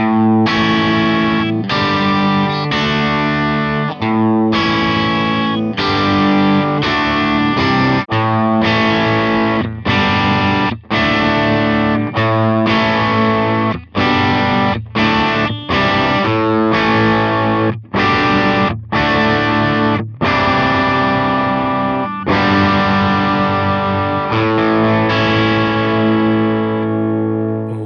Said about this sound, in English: It starts getting a little bit more aggressive. So right. Let's take a listen to the bridge pickup on the three guitars.